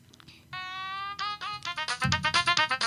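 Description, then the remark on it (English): A mobile phone with an almost dead battery plays a loud ringtone: a steady electronic tone, then a quick run of bright, rhythmic beeping notes that keep pulsing to the end, with no one talking. “I thought you said your phone was dead. It's almost dead.”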